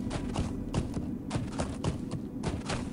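Horse hooves clip-clop at a steady walking pace as a rider travels through a very snowy, cold landscape on top of a hill, past the remains of an abandoned settlement, a string of crisp strikes over a low rumbling background, with no one talking.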